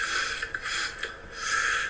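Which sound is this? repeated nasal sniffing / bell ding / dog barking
repeated nasal sniffing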